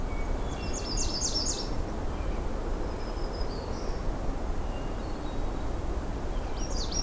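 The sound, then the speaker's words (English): A hermit thrush and a black-throated green warbler sing faintly in the background in the morning by a lake shore, with a few short high phrases, over a steady rushing background noise of wind or water. “So in the background, we've got the hermit thrush and the black-throated green warbler.”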